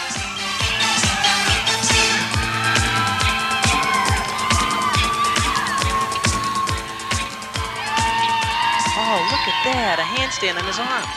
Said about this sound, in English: I wanted to play a little clip. This is from a cheer routine from the 80s, something that we found in your article. So just listen to it right now, and then we'll play kind of something more contemporary.